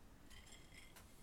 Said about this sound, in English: Sorry, that's the sound of my ice in my cocktail, which I know you love that sound.